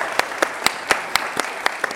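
An audience claps steadily as two guests leave the stage, a dense wash of applause with a few sharp individual claps standing out at a regular, brisk rhythm throughout. No one speaks over it.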